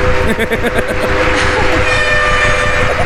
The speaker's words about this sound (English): Fucking air horn.